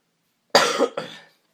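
A man coughs twice in quick succession, a harsh, close burst followed by a slightly shorter second one, with silence before and after.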